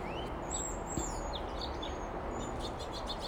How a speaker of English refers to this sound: I'm out here in the back corner of my yard now. Trying to find a place where I could sit comfortably. I don't have a chair back here, but I'd like to hear the birds.